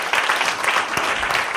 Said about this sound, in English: Would you give them a warm applause and welcome them?